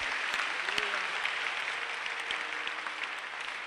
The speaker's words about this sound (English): I don't like your clapping. If you don't clap, don't clap at all.